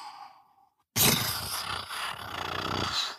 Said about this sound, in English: That was thunder. It's lightning and then some thunder.